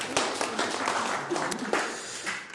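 A crowd applauds a volunteer steadily, a dense patter of many hands clapping at once, sustained, with faint murmuring voices mixed in.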